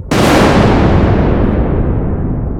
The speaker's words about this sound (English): Oh, an enormous lightning bolt has just hit one of the conductors. Yes, it's glowing. It's glowing.